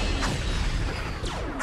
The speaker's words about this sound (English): Let the laser sound effects soak in first.